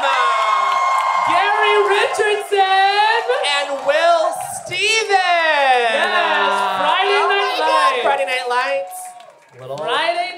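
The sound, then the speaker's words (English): A crowd cheers loudly and continuously for a group of performers being brought out, with many overlapping high whoops and yells rising and falling in pitch, briefly dipping before a final burst of shouting. “Please give it up for this group.”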